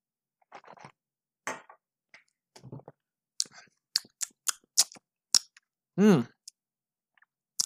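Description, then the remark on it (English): Wet mouth sounds of a sip of bourbon being swished and chewed in the mouth, with a series of sharp smacking clicks and a brief swallowing or throaty vocal sound near the end. “Take another taste. I'm going to try to chew it also without coughing.”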